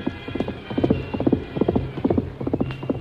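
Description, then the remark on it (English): Rapid, galloping hoofbeats of Silver, the Lone Ranger's great white horse, carrying its masked rider across rough ground, pounding in quick repeated clusters, loud, with a steady driving rhythm and no voices. “In spite of the rough ground where a misstep would have meant death for both horse and rider, Silver's hoofs beat out a savage tattoo.”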